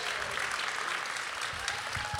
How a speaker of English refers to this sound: I know you're applauding yourself